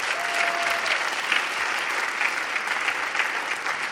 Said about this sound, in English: Come on, give the Lord a clap offering.